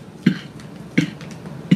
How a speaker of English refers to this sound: Big pellet in here. He's coughing. He's coughing.